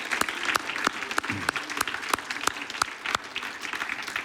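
An audience claps for the Lord to thank him, together in a steady, even rhythm, sharp unified beats about three per second riding over a dense bed of scattered applause, fairly loud throughout with no voices standing out.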